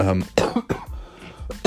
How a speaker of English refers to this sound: excuse me. I'm not going to edit this podcast. You're just going to hear me cough there.